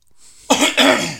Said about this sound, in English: Excuse me. Couldn't get to the cough button soon enough there.